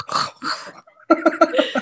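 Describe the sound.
A voice imitates a man's incessant snoring: two harsh, breathy snorts, a brief pause, then a quick run of throaty, voiced rattling pulses, fairly loud and with no other talk.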